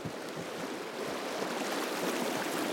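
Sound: river water flowing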